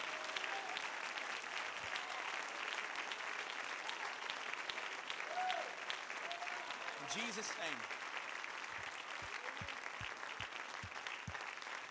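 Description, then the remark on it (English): A church audience claps in praise in a dense, sustained round of applause lasting the whole stretch, loud and even, with a few voices and a brief rising cheer mixed into the clapping. “If you've been saved, reconciled by the blood of the Lamb, would you give him one more hand clap of praise before you're seated here tonight?”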